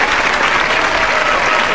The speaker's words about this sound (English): Now, what is this audience clapping about? Nothing. It's a laugh track. Well, they have audiences usually. They do, but they sweeten it up.